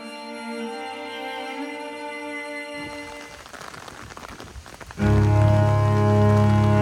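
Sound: rain falling outdoors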